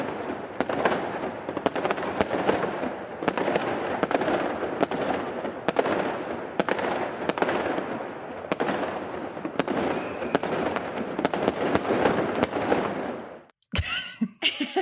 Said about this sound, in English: Yeah, fireworks at the very least.